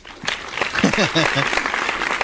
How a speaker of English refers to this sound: We're going to do a thing. All right, we're going to clap.